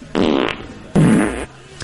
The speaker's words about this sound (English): Yeah, they're probably from a sound effect CD, and they got dumped onto the cart, and then those were just the farts that we used in forever. Yes, and so every time we would use them, it was the same ones, these two.